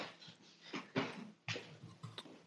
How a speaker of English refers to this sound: Can I go get my dog real quick? My dog is running around upstairs. Yeah. He's getting into things.